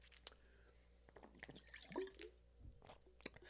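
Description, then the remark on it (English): Someone takes quiet sips of water: a few soft, wet slurps and small swallowing clicks scattered over a few seconds, with no talking. “A little water break there.”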